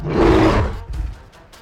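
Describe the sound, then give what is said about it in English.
A lumbering creature's mighty roar bursts out loud and deep, a broad rumbling bellow lasting about half a second before trailing off into softer growling breaths. “The creature lumbered over, scooping up Nick and let out another mighty roar.”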